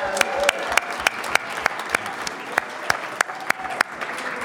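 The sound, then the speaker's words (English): An audience claps steadily, many sharp hand claps overlapping into a dense, lively patter that holds at an even, fairly loud level throughout, with a faint murmur of voices underneath. “You guys are going to applaud every clause in this sentence.”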